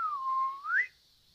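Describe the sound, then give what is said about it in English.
A single clear human whistle: the pitch dips slightly, holds steady, then sweeps upward before cutting off, followed by quiet. “So I do another whistle.”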